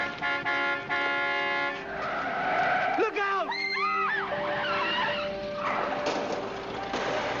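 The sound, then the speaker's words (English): A car horn blares amid busy street traffic, then a car's tires squeal in a sharp, wavering skid lasting a couple of seconds before it hits a pedestrian crossing the road; the traffic noise carries on. “Smith is struck down by a car and falls unconscious”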